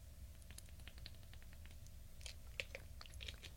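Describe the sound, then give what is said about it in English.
Someone sips cold water: a run of faint, wet mouth clicks and small slurps, with a few sharper ticks near the end, over quiet low background hum and no talking. “Excuse me as I take a sip of water here.”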